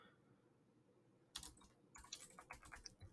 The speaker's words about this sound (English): Yes, listen to my keyboard.